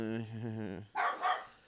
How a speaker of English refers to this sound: what is that? That's your brother, dummy. You're barking at your brother.